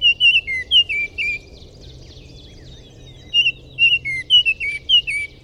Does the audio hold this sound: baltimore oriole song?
yes